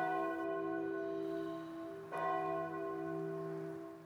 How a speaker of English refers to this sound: That church bell you just heard is me kind of trying out some new formatting things for the podcast. Basically, I want to distinguish with some type of audio cue that we're switching to a different section